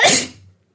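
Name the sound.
sneeze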